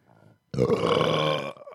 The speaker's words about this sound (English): I'm all gassed up. I got a burp and it's just not coming out. There's one deep one.